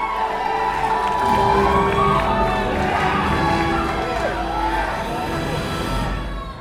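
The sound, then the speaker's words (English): A large movie theater audience at a Black Panther screening roars with yelling and cheering, a dense, sustained wall of excited voices with whoops rising out of it, steady and loud for several seconds. “People were yelling, people were crying, people were laughing.”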